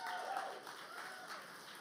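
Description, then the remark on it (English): An audience claps in a steady, dense wash of applause that holds at an even level for the whole stretch, with no single claps standing out and no one speaking. “This year, come May, yep, you can clap for that.”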